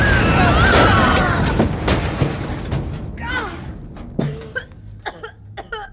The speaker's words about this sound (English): Is everyone okay? Holy shareholders, what was that? Ah, looks like resources rigged the door to explode!